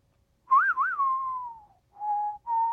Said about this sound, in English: Hey, that was very good. She's being overly generous. I don't know anything about real whistling, including, it turns out, how we feel when we do whistle. When you're whistling, it's kind of impossible to be sad.